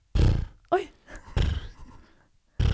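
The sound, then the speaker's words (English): A voice imitates strange sleep breathing: four loud, rough bursts of snorting, rasping breath, one with a short voiced groan, and a longer gravelly exhale trailing off before a final snort. “I just go, I have a weird breathing thing in my sleep. I'm like, I'd go like this.”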